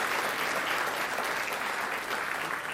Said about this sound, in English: So I think we can give a round of applause for that and for all of those who are participating tonight.